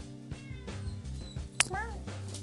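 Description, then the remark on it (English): A pet cat lets out a single short meow, moderately loud, just after a sharp click, over a steady low background hum. “That was my kitty.”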